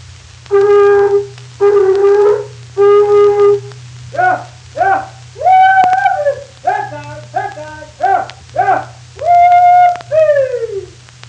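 A cow horn blown by a man from Bandera, Texas, to call dogs: three long, steady, reedy blasts, then a run of shorter wavering toots that rise and fall in pitch, ending on a higher held note that droops away, over a low hum.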